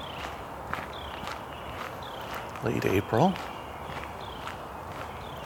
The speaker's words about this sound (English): We've got a lot of robins, a few red-winged blackbirds, and Carolina wren, and a woodpecker of some sort. And chipping sparrow I'm hearing fairly far off.